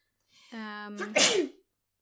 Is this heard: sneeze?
yes